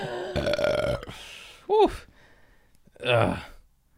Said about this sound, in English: I said, people pay to see this. As I burp.